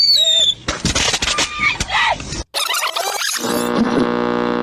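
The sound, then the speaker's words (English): Fireworks going off: a high whistle, then a run of sharp crackling bursts and a dense fizzing crackle, ending in a loud buzzing hiss, with no pauses in between. “It's illegal to buy fireworks for a child or sell them to anyone under 18.”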